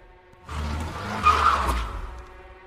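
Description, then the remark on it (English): A car swerves to avoid a reindeer standing in its path and skids through slush, a loud rush of engine rumble and hissing tire noise with a brief squeal, lasting about two seconds before fading out. “Snapped into a panic, I twisted the wheels in a desperate swerve. The car veered greasily to the side in a fine spray of slosh.”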